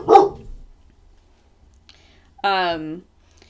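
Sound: dog barking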